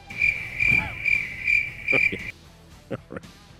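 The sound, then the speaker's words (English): A cricket chirp sound effect plays in steady, rhythmic high-pitched pulses, clear, for about two seconds before stopping abruptly. A few soft thumps follow in the quiet afterward. “Something like that, can I please get a cricket sound effect, please? All cricket chirp.”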